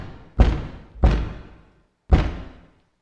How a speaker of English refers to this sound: And then came the knock. Hard and terrible. Digging at the wood of our door.